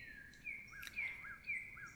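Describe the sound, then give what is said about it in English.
A bird calls outdoors in a quiet setting: several short, high whistled chirps repeat at irregular intervals, fairly faint, with no voices present. “oh, listen to that. Hopefully I can stop here when I hear an owl or something so you can really hear it.”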